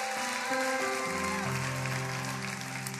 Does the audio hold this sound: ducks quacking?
no